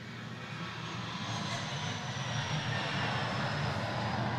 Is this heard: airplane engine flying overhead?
yes